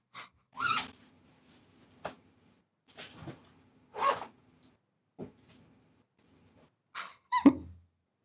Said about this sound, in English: The sound of zippers in the background.